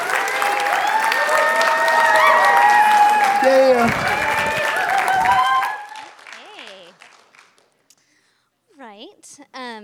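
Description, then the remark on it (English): A crowd claps loudly and steadily for about six seconds for a woman about to share her testimony, with voices calling out over the applause, before it fades and a single person starts talking. “So if you guys will take the time and some clapping, standing, doing something.”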